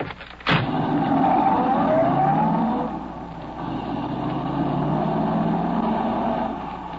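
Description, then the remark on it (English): A getaway car's engine revs up loudly after a brief sharp click, then the car accelerates away, its rising engine note holding steady with no voices. “Is that the car there? Yeah. Everything okay? Yeah, get going.”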